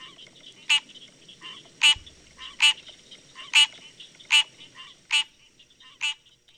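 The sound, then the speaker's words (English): A common tree frog calls repeatedly, sharp honking croaks coming about every three-quarters of a second, loud over a faint, steady background hum, with no one speaking. “That's a common tree frog.”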